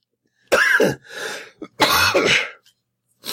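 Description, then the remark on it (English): A person coughs hard twice, each a harsh, raspy burst with a short throaty rasp between them, followed by a brief pause. “I can't really get rid of that cough. It's a bad cough.”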